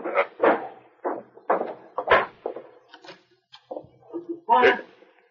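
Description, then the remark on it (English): A desk drawer in a bank office slides open and shuts as a money sack is put inside, with a couple of short wooden knocks and clicks, mixed in among people talking. “Put that money sack in the drawer on my desk.”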